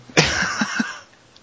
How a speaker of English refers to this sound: excuse me, I have to cough. That was not my news of the week. That was a normal biological reaction.